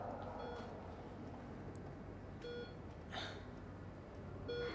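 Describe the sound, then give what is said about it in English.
A heart monitor registering 89 beats per minute beeps in short, clear tones spaced about two seconds apart, sounding over a steady low hum and rumble of room noise. “I know that this is the sound of a heart monitor.”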